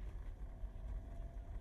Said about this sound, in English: And I'm driving along Patrick Street now, heading on to our Leaside clinic, which we'll be attending later in the morning at 49 Grand Parade.